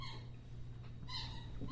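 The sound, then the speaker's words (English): Two short, high-pitched squeaks from a squeaky toy used by the dog Scout, one at the start and a slightly longer one near the end, fairly faint over a steady low background hum. “I want to apologize right now if you can hear any squeaking in the video. That would be my dog, Scout.”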